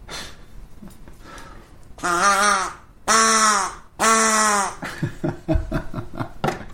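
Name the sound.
duck call quacking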